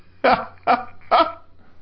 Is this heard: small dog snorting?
yes